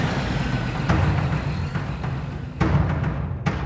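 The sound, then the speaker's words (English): The engine of a heavy Greason utility truck turns over and settles into a steady, deep idling rumble, with a few sharp mechanical bursts breaking through. No one speaks. “The leaves rustled around the seat and dash, and then, to Ethan's surprise, the truck's lights came on and the engine started.”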